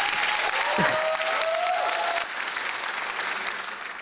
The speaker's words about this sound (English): Audience, big round of applause.